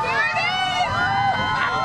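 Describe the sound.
A large outdoor crowd in Times Square, watching a space launch shown on a giant screen, clamors steadily, many overlapping voices rising and falling in excited shouts and chatter, loud throughout the brief moment.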